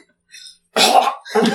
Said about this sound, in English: He coughs up blood.